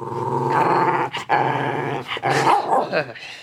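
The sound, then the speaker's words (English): A dog growls steadily for a few seconds, a low rumbling snarl with brief breaks and a couple of sharper, yappy bursts mixed in. “play nice in there”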